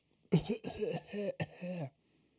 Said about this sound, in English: God, I don't know what's going on. Also, I got this tickle. Cover your face. Mm-hmm. Don't cough on me, bitch. Don't worry.